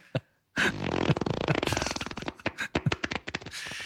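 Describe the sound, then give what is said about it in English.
A string of loud, wet, sputtering fart sound effects, one long rumbling blast followed by a rapid series of shorter spluttering bursts, with no talking. “Can you put some farts over that bit where we're dreaming about bashing someone and getting away with it?”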